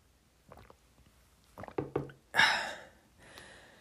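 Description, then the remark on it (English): A few soft slurping sips of water and a gulp, followed by a sharp breathy exhale after drinking, with quiet pauses between; no talking. “Sipping some water while you guys think”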